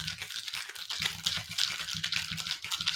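A steady fizzing, crackling hiss of liquid being poured and foaming up, with a faint low gurgle underneath and small pops flickering throughout, with no talking.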